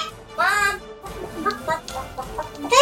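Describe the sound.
A person's voice imitates a chicken, giving a loud rising squawk followed by a run of short, choppy clucks. It is fairly loud, with no other talk.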